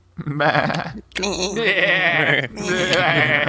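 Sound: goat bleating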